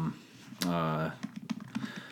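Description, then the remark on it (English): Quick keystrokes clatter on a computer keyboard in an uneven run of clicks, following a short hummed vocal sound near the start, as someone types to look up who directed a film. “You can hear me typing.”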